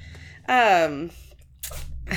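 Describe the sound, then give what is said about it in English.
A female cat sneezes once, a quick breathy burst with a hissy edge, following a short sung-out vocal sound that falls in pitch. A faint low hum runs underneath. “And she just sneezed and sneezing disdain.”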